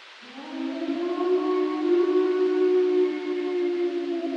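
A single long, dog-like howl, picked up by an overnight recording about four hours into sleep, holds a steady, slightly wavering pitch for several seconds, fairly loud and clear, with no talking and only faint background hiss.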